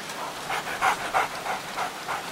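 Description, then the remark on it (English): A dog pants in quick, breathy bursts, about eight rhythmic huffs in a couple of seconds, moderately loud with no other sounds around it. “Danko, it's you. You scared me, silly dog.”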